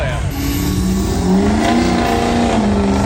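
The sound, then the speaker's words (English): A Navigator on a 6-inch lift, from Illinois, revs its engine loudly through its exhaust during a parade of cars, the pitch climbing and dipping in steady harmonic sweeps, continuous, with people talking faintly in the background. “We're watching a parade of really interesting cars here. We got a Navigator on a 6-inch lift. What kind of exhaust pipe is that?”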